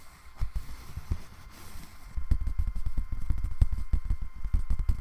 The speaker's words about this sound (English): if I'm attempting to scratch piece of paper. Could possibly mix in a bit of tapping and scratching there actually. I'm finding it quite hard to scratch that.